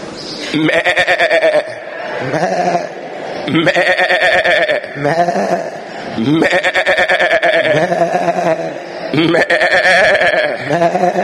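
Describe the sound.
Several voices imitate a sheep's bleat together, loud, in four drawn-out wavering "baa" calls separated by brief pauses.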